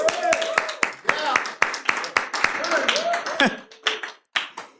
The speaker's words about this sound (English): They're wonderful people. Let's give them a little applause.